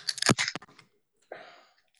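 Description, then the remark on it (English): A can of sour, dark 7% ABV, 20 IBU beer being cracked open: a loud cluster of sharp metallic clicks and fizzing hiss, then a short silence and a second, softer burst of hissing release. “So let's give the people the sound that they're all longing to hear, and it's the opening of the can, shall we?”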